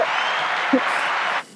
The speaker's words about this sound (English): Hey, let's clap it up for you, man. A round of applause for my guy.